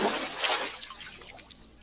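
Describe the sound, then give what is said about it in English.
Ice-cold Pepsi splashes and pours into a bowl of cornflakes, a bright hissing rush that tapers into soft trickling and crackling bubbles, moderately loud with no talking. “I poured way too much.”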